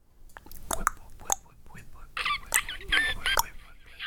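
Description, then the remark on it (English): A voice imitates eerie cave ambience: breathy whispered hisses, sharp clicks and a few squeaky, chirping whistles in an irregular string of bursts, with no ordinary talking. “Cave noises.”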